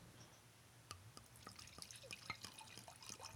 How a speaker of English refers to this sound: we have to pour our wine